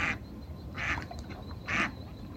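Ducks quack three times at a steady, unhurried pace, the calls fairly faint, over a low outdoor background hum with no one talking.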